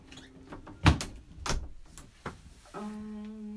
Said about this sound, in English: Open the door.